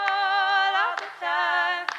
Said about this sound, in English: Yeah, so this was the original thing. You can hear the clapping in the room.